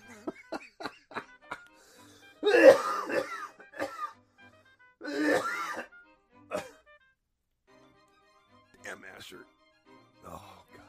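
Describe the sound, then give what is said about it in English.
A man coughs and clears his throat a few times in harsh bursts, with short quiet gaps and faint clicks and breaths between them. “Don't make me cough, bro.”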